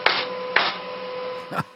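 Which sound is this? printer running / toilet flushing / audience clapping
printer running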